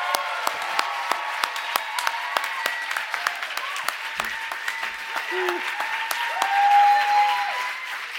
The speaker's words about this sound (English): And so please, Third Coast, give a massive fucking round of applause for